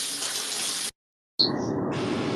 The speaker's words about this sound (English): What is that noise back there? Oh, I'm having a shower.